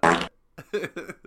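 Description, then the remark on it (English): A man blows a loud, buzzing raspberry with his lips, imitating a fart in one short burst, followed by a few bursts of voice that sound like speech or laughter. “The fella to the right of me who just did the fart noise”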